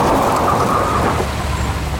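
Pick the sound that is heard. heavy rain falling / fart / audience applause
heavy rain falling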